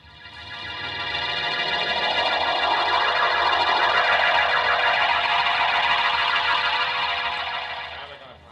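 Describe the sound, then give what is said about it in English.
A police car siren wails continuously, its rich harmonic tone slowly rising and falling in pitch as it swells up, holds loud for several seconds, then fades away. No one speaks. “And turn on that siren.”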